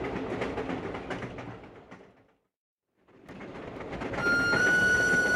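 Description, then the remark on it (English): A train engine rumbles and clatters steadily, drops out for a brief moment, then returns louder, with a sustained high whistle sounding over the noise at the end. “They're using a faster engine!”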